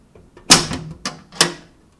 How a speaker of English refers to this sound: Can you open that door to the oven for me one more time?